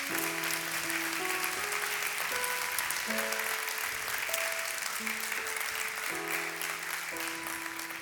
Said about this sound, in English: Why don't you give the Lord a hand clap one more time?